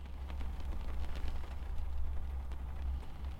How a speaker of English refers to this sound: It's raining when we reach Rivington Pike, the kind of early spring rain you often find in the north, grey and flat-skied and forbidding.